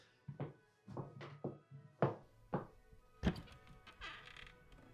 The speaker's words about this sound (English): They've just pulled up at the front. Oh, right. I'll get the door.